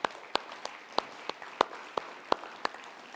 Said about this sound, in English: Anybody in here works for the government? If you do, please stand. Yeah, we praise God, but we honor people, right? So can we give some applause to these guys?